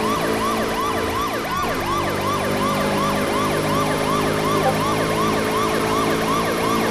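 A police car siren wails in rapid, repeating rising-and-falling sweeps, loud and steady throughout with no pause, and no voices present.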